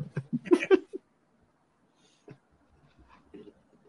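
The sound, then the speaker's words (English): Two dogs, the speaker's dog and his brother's dog, bark in a quick flurry of four or five sharp, fairly loud yaps during the first second, then things fall nearly quiet apart from a few faint noises. “They're dogs. They don't need anything to fucking complain about.”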